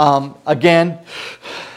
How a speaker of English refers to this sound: You always got to tell them through the mouth. If they're breathing through their nose, you're going to hear nasal stuff with it. It doesn't sound as good. So please breathe in and out through your mouth.